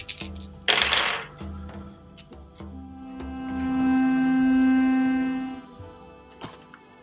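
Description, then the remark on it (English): Four dice are rolled at once, rattling and clattering together in a quick burst of sharp clicks, fairly loud, followed by a steady low hum as things settle. “I didn't prep my dice. When you need 4 of them, I like to roll them all at once”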